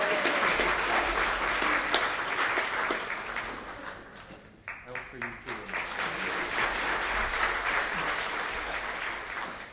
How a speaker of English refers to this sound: Y'all can feel free to like applaud and, you know, yay, woo!